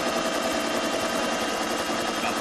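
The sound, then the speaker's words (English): A sewing machine runs at high speed, its rapid, even mechanical clatter steady and loud throughout, with a constant whirring hum underneath and no voices. “And then suddenly, that sewing machine just starts going loud. It's going fast again.”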